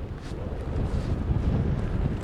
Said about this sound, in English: The wind is faster than I expected, actually. They were saying a sea breeze would kick in, but I thought it would be later this afternoon. It's quite good. It's the perfect direction for long, fast reaches, and it's blowing probably about 10 to 15